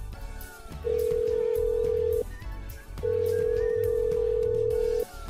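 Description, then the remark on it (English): A phone call ringing out from a car on the highway as the driver calls a friend: two long, steady electronic ringback tones separated by a short pause, heard loud over a low, constant rumble of road noise. “I need to call my buddy Dave and see if he's on his way.”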